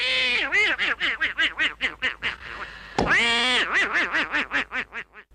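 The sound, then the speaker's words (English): A person does a Donald Duck impression, rattling off rapid, raspy quacking syllables in a continuous burst, loud, with a brief pause midway before the quacky chatter resumes. “There was one doctor that I had that did an amazing Donald Duck impression.”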